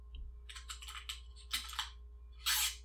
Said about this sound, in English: Tape? Yep.